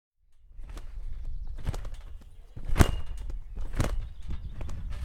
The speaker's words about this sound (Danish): Han kan godt lide at hoppe i sin havetrampolin.